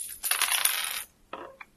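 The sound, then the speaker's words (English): Two dice, one for the tens and one for the ones, clatter and tumble across a hard tabletop in a bright, rattling burst, then settle with a couple of small, quick taps. Fairly loud, with no voices. “I roll here, like... one of these?”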